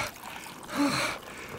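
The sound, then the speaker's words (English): Water for cleaning a wound pours into a basin in a short, splashy rush that swells and fades within about half a second, set against a soft hiss with no voices. “I need some water to clean your wound. Where's that basin? This is just water, Uncle.”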